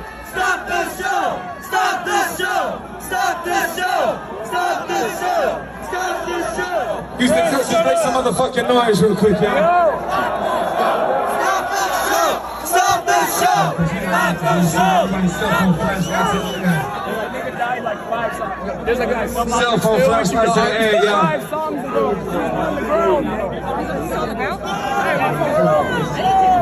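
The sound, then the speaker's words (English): A large concert crowd chants "stop the show" loudly in unison at a singer while he sings on stage, a dense wall of voices repeating the short rhythmic phrase over and over without pause for nearly half a minute. “This is what was being chanted back to him while he was singing.”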